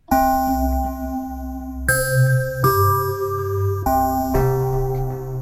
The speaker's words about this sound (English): Mallet instruments. Let's look at mallet. Underwater bells. Let's check it out.